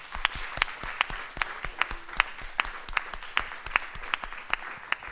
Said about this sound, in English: So should we just give Jesus a round of applause?